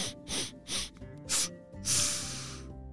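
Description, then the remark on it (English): Two animals raise their noses and sniff the air in several short, quick bursts, then draw one longer inhale, fairly loud over a faint steady background hum, searching for a trail. No one speaks. “They both raised their noses up to the air and started to sniff.”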